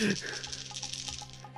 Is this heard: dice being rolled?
yes